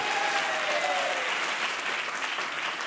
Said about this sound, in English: Clap it up for him. Where is he?